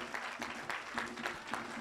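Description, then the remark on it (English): A church audience gives a victory hand clap of praise to Jesus Christ, many overlapping claps forming a dense, roughly rhythmic wash with periodic louder accents. “Let's give our Lord and Savior Jesus Christ a victory hand clap of praise.”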